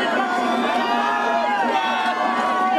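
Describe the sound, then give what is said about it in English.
A large crowd of protesters, some holding Mexican flags, screams and yells continuously at a protest facing lines of police, a dense wall of overlapping raised voices with shrill cries rising and falling throughout, loud and steady with no pauses. “The screaming and yelling is pretty normal, but people there with Mexican flags.”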